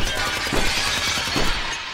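A glass door at a west entrance shatters from gunshots fired by two shooters in a corridor, a loud, sustained burst of crashing and tinkling fragments with a couple of sharper impacts inside the noise, lasting about two seconds with no voices.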